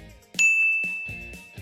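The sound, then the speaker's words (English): A single bright bell ding strikes and rings out with a long, clear sustain, marking the change of exercise during a workout, while soft rhythmic thumps continue underneath. “There's a handy little bell sound too.”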